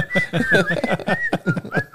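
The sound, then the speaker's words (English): Someone whistles a short, wavering tune, the pitch sliding between notes, while a voice chatters underneath throughout. “Loose whistling.”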